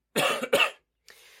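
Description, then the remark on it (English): Two quick, harsh coughs in close succession, loud, followed by a brief pause and a faint, breathy rasp trailing off. “it's probably going to be a little bit like a Ange Postecoglou press of this, because I've got a bit of a cough and a gravelly voice, so excuse me.”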